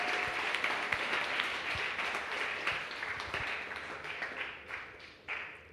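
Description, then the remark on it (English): A crowd applauds steadily for several seconds, many hands clapping in a dense, bright wash that tapers off toward the end, with no talking over it. The applause is for eight young people who were baptized that day. “And let's give them all a big clap.”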